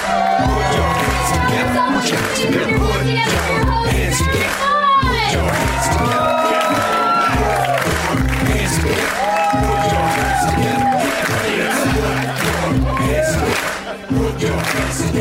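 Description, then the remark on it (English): A loud live audience at the UCB cheers and claps continuously, with scattered whoops and shouting voices rising over the steady roar of applause throughout. “Put your hands together.”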